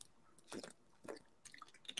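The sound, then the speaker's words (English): Someone takes a swig of water, with two or three wet gulps and swallowing noises spaced about half a second apart, quiet and with no talking. “Sorry, taking a swig of water.”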